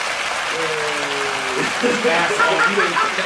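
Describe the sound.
An applause sound effect, cued on a show to welcome a guest: a steady, dense wash of clapping across the whole three seconds, with tonal voices and cheers rising over it in places.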